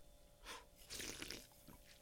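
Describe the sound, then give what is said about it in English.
Faint sips from a drink: a short airy slurp, then a longer hissing draw of breath and liquid, with a soft steady hum underneath and no talking. “So I'm going to grab a sip of beverage.”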